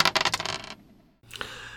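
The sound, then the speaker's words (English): Dice clatter across a hard tabletop in a quick burst of rattling bounces, loud, then a short silence before a fainter scrape or click follows. “roll those dice.”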